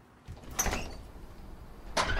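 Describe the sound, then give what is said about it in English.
A door is opened, with a short rattling burst of noise followed by a quiet pause and then a second brief scrape or clunk as it swings. No one speaks. “Do you want to answer the door?”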